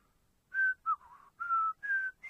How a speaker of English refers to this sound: Honestly, I'll tell you, I could sit here and whistle half the tunes from, you know, from the battlefields of America, and I'd still pull an audience.